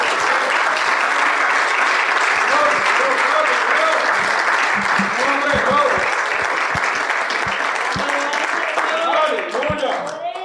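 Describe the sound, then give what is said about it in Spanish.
A church audience breaks into sustained, dense applause for the King of Kings, loud and continuous throughout, with scattered voices shouting and cheering underneath before it starts to taper at the end. “Usted se atreve a darle un aplauso a Rey de Reyes, Señor del Señor.”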